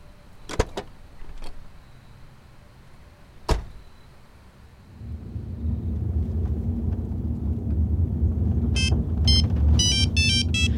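A phone ringtone starts near the end, a bright electronic melody of quick repeating tones over the low rumble of a car engine, after a few sharp door-like thumps.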